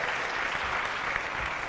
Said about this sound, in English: Let's give a round of applause for our praise dancers. Come on now. Come on now.